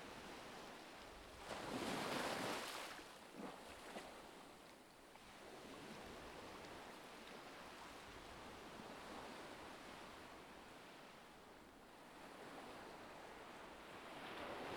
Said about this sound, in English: As the Atlantic waves break against the freezing shore of the West Coast, you breathe in deeply, inhaling the pure, invigorating air.